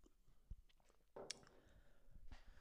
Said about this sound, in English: Sip of coffee.